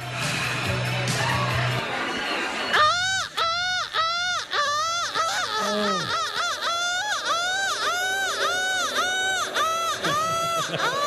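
A large crowd erupts into loud, sustained booing after a few seconds of low murmur, many voices overlapping in long wavering jeers that keep going to the end.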